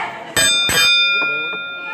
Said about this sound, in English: Ring the bell. Ring the bell.